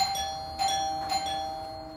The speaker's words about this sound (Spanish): Y en una mañana un hombre se preparaba para salir a hacer su oficio cuando la puerta y el timbre de la puerta, alguien estaba ahí.